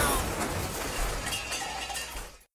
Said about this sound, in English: Crash. Henry's Humvee had slammed with the side against the tree, stopping the car instantly, and the motor turned off.